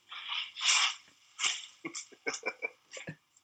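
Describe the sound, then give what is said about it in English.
Crinkly rustling and shuffling of food being handled, in a string of irregular bursts, some longer swishes and some short crackles, with no one talking. “Okay, so, sorry, I'm hearing a lot of shuffling.”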